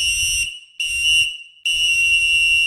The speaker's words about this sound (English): Okay, with that said, it's almost that time. Go ahead and blow the whistle.